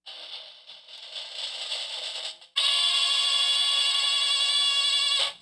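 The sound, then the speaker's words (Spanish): A short, bright fanfare plays on its own: a buzzy opening phrase, then a louder held brassy chord that sustains for a few seconds before cutting off abruptly. It is played before the winning Powerball lottery numbers are announced. “Espérense un momentico, voy a poner una fanfarria.”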